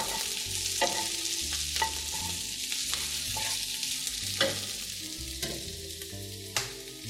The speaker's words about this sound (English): My onions are still sizzling, and I'm going to transfer them into the bottom of my baking sheets, and that ends the symphony.